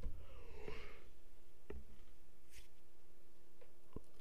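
human body sound, yawning

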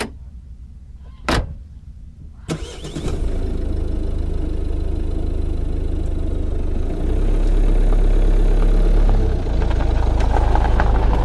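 vehicle, car engine idling

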